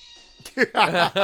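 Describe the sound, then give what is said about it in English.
A cat lets out a sudden, loud meowing yowl that strains upward in pitch, following a brief faint rustle at the start, a startling jump scare in a slasher movie scene where a cat springs out of a box. “Good old cat out of the box scare.”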